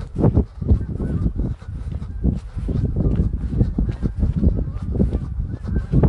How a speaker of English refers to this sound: All the geese are out. I don't know if you can hear them. I hear them. I don't see them.